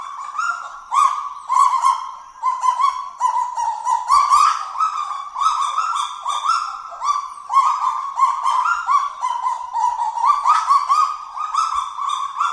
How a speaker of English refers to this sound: A conga's call, if you get a bunch of them together, they sound like a pack of barking chihuahuas, basically.